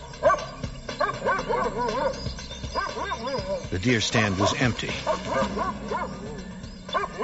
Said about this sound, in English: And the chase was on. The dogs immediately took us to a tree, and were barking up a tree, which kind of made us a little scared, think he might be in the tree